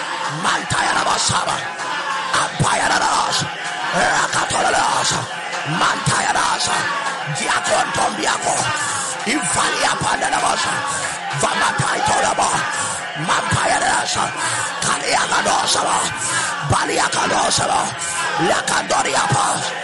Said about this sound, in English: somebody shouted loud and clear, I excuse myself from the power of the grave until my appointed time.